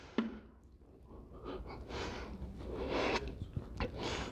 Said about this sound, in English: I gotta drink some water on this one.